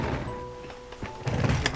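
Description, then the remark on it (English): An upholsterer turns over a heavy antique settee in an upholstery workshop to inspect its underside, with a few dull wooden thunks and knocks and a scraping shuffle of the frame, ending in a louder cluster of bumps. “I'm just turning up the chair, the settee there now to give a look at the bottom of it.”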